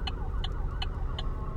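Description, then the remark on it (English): An ambulance siren wails in quick, repeating pulses as the ambulance crosses light rail tracks while a light rail train is coming through, its wavering pitch riding over a heavy, steady traffic rumble. No one speaks. “Oh, if you hear that, that's an ambulance that just crossed the light rail tracks while the light rail is coming through.”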